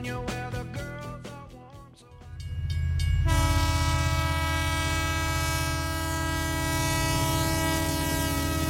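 A train horn sounds short blasts, then holds a loud, sustained chord over the deep rumble and clatter of rail cars rolling past.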